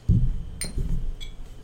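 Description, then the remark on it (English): Glasses clink in a toast with Texas blended whiskey: a bright, short clink of glass against glass rings out once, followed by a fainter second tap, over low thuds and room noise with no talking. “Well, let's give this Texas blended whiskey another shot. All right. Cheers.”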